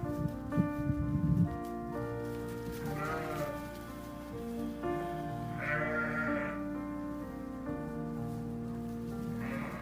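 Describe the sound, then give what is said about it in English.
Several sheep on a farm bleat over one another in a steady, overlapping chorus, fairly loud, with a light patter like rain in the background and no one speaking. “Most difficult enterprise on this farm is the sheep.”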